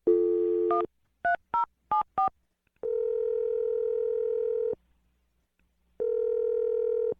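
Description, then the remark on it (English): Dialing a phone call to a girlfriend: a steady dial tone, then four quick keypad beeps of varied pitch, followed by two long, even ringing tones separated by a silent gap. No one speaks. “All right, I'm going to dial the number right now.”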